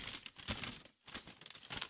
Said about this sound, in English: I don't know if you can hear that, but I'm holding in my hands here a dunce cap. All right? A dunce cap. It's a paper bag. I'm going to now put this on my head.